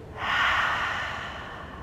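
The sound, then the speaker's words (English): A long, breathy exhale through the mouth, rushing softly and steadily before gradually fading, with no talking. “Exhale.”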